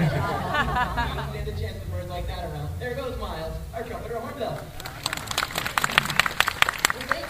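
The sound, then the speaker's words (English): A voice talks at first, then an audience at a bird show applauds a volunteer after her toss: a burst of sharp, fairly loud claps that fills the last couple of seconds. “Big round of applause”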